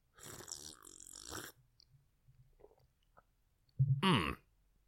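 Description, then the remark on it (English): A wet slurping sip of whiskey with a bubbly, gurgling texture, then faint clicks, and a second louder, shorter bubbly slurp near the end. “Extra bubbly. Not always a good thing for whiskey.”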